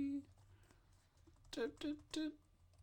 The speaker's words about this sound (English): Very good at typing.